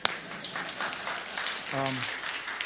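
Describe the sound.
Hand clapping in a steady, fairly quiet run of claps, with a short murmur of voice partway through.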